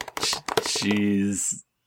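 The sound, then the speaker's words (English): Quick clattering taps of a die tumbling across a hard tabletop, followed by a short sustained hummed voice tone before it falls silent. “And you're going to roll a dice, 50?”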